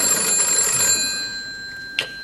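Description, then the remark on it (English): A telephone bell rings with a bright metallic trill for about a second, fades, then gives one short sharp ring near the end. No one speaks. “then she gets a phone call, and it's Audrey again”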